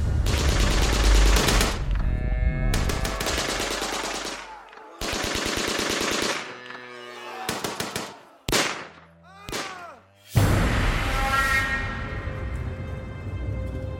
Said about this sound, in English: The soldiers unleashed their machine guns and opened fire on the men's legs.